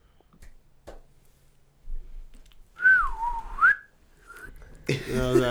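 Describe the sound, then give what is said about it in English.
A single whistle blown to mark a break gives a gliding tone that swoops downward and climbs back up, followed by a brief second chirp, then a louder burst of mixed sound cuts in at the end. “We got to get a pull whistle like Taylor has.”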